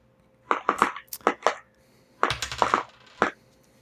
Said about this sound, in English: So this time I'd like you to roll, but you're only rolling 9 dice now. I have permanently taken one of your dice from you.